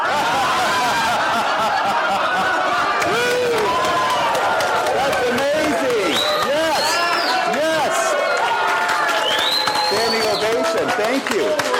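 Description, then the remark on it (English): A crowd screams and shrieks continuously, many high voices overlapping with laughter in a loud, dense wall of excited noise, rising and sliding whoops cutting through for about twelve seconds; an audience laughing and screaming on cue after a count of three. “Just laugh and scream and shriek like you're having the best freaking time of your life.”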